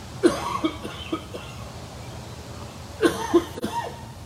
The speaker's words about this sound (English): I don't think he coughed before he said that. I'm lacking fluids here.